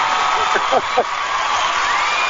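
A dense, steady roar of crowd noise, thin and band-limited as if over a phone line, with a few short voiced whoops rising out of it early on.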